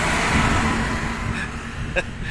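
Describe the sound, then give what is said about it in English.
A truck rumbles past, a steady broad roar of engine and road noise that lingers for a couple of seconds, with a faint clunk near the end. “I'll wait for this truck to go past.”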